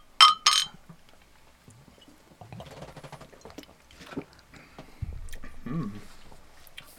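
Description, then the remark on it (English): Two quick, bright clinks of glasses of oatmeal stout beer striking together in a toast at the start, followed by quieter handling noises and a faint murmur of voices. “Well, boys, you ready to find poetry within? Let's do it. Cheers, fellas.”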